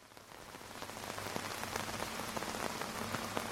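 Heavy rain pours down steadily at night, around 2:47 a.m., at a backcountry tent camp, a dense hiss with scattered sharper drops spattering onto a hard surface, loud and continuous throughout with no voices.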